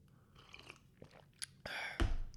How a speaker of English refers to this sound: Oh, right, okay. Have a sip of water